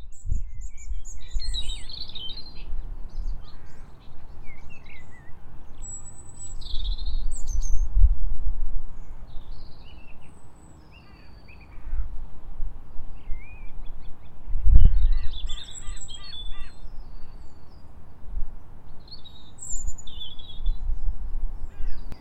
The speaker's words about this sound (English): And then all around the park there are the original trees, the original bushes, and we can hear other birds here again very similar to what you might hear in a garden. We can hear magpies and blackbirds.